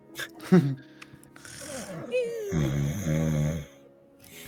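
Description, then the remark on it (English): A voice imitates the cute little snores of someone sleeping, soft rhythmic nasal rasps and breathy snorts, with a brief spoken sound at the start and no other background noise. “Like cute little snores.”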